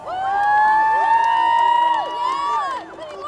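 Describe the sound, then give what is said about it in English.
A crowd packed on a dock cheers and yells loudly and continuously as racers sprint to the finish line, many voices overlapping in sustained shouts and whoops that swell together for several seconds. “And then the cheering started on the dock. And it's just full of people on the dock.”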